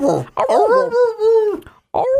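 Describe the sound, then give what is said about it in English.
A person howls like a dog, a long wavering vocal wail with sliding pitch, followed by a brief pause and a shorter howl starting up again; fairly loud. “Shall we play the song instead of just howling like that?”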